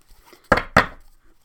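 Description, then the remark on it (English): Two quick, crisp bursts of a deck of Witch's Kitchen Oracle cards being shuffled, each a short papery rattle that fades fast, separated by a brief pause with near-silence around them and no talking. “That is the Witch's Kitchen Oracle cards. Shuffle a little bit.”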